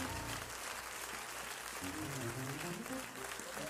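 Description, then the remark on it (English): A church audience claps hands to give God praise in a steady, dense wash of applause, with voices and tones rising underneath the clapping throughout. “One more time, clap your hands and give God praise.”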